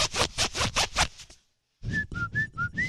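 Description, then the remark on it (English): A zipper held close to the microphone rasps loudly, zipped back and forth in quick rhythmic strokes, then pauses before another burst of strokes mixed with short high whistle-like tones. No one speaks. “You got to get the zipper really close to the microphone.”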